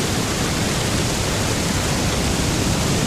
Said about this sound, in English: Waves.